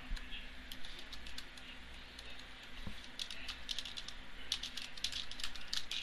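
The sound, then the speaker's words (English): Rapid, irregular clicking of computer keys being typed, continuing steadily over a low background hum, with a brief faster burst near the end. “I'm sorry, I'm still typing.”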